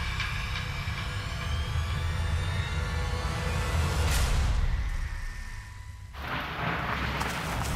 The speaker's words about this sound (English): Thunder exploded throughout the sky as I tore like its fearsome counterpart across the open fields, running as fast as I could towards the small forest.